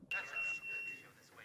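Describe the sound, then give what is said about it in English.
A beeper, a police emergency call, sounds one steady, high-pitched electronic tone that holds for nearly a second before cutting off, with people's voices talking underneath it throughout. “as he's talking to Murray, a beeper goes off, and that leads us to the first clip”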